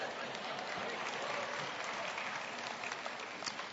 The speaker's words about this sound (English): How come there's more women clapping than men?